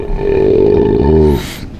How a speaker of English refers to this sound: Number two. Was that a belch?